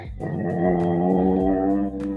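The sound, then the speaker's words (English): A person imitates a Rottweiler's growl: a low, rough, sustained rumble held steadily for a couple of seconds, fairly loud, with no other talking. “He smell you and start barking. Start growling.”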